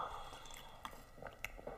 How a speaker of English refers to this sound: Sorry, I needed some water there.